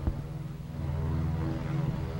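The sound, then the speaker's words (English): A propeller airplane, heading over to an island, drones overhead, a steady low engine hum with layered buzzing tones that swells slightly partway through and holds without a break. No one speaks. “There's your airplane, Andy. Took me that long to find one.”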